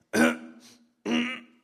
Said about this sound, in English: Boy, I seem to be coughing.